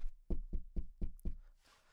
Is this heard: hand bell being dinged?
no